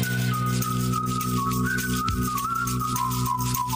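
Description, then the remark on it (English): A bright whistled pop melody glides up and down over a steady backing track, the tune carried clearly and continuously from start to finish with no voices. “Enjoy whistling that on your way to work, everybody.”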